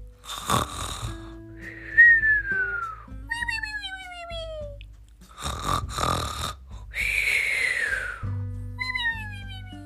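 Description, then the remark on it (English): Several relatives sleep in a house, some on the floor, breathing and snoring: rough, rattling snores alternate with high, whistling exhales that slide downward in pitch, a steady slow rhythm with no talking. “It was different going to sleep with all that new breathing in the house.”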